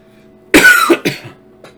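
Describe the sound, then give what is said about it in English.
A couple of harsh coughs in quick succession, the first longer and raspy, followed by a shorter one and a faint trailing throat sound, with no talking. “Bet y'all wish I had a cough button.”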